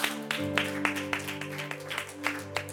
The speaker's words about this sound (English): Because, yes, if you're doing it for the Lord, please just give the Lord a best clap offering.